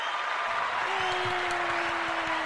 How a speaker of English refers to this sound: Let's do another round of applause for you, girl.